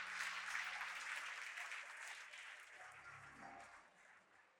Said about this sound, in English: Now, come on, put your hands together and give the Lord a hand clap.